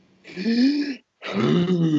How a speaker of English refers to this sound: Yeah, just breathe in like that and then just hold it. And then just give it a breathe out. Just like that. And make sure you make the sound effect as you're doing it.